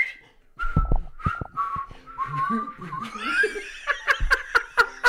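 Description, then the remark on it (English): Someone whistles a tune badly, wavering and breathy with pitch slips, while people laugh and snicker; the whistle grows into short, sharp repeated bursts toward the end. “And then the worst whistling ever happens.”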